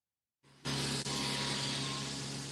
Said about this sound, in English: Lawnmower?